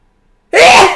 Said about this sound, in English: Here we go again. You gotta sneeze.